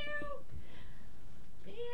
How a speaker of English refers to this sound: Got DJ Kitty Bot coming up next. Say meow, DJ Kitty Bot.